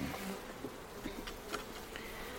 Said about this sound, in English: Well, I think there's a lot of bees in here.